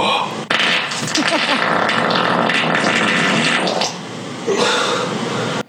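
A long, loud, raspy fart drags on for about five seconds, dipping briefly near the end before a final burst cuts off abruptly.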